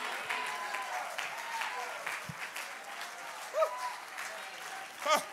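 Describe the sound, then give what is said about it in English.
An audience at a church service stands and claps their hands in a steady, dense wash of applause, lifting up the name of Jesus, with a few voices calling out briefly above it near the end. “Clap your hands and lift up the name of Jesus.”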